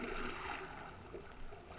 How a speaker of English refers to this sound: 5 minutes went by, and then we heard the sound of muffled oars. From out of the blackness, riding out to us on the swells, came three boats.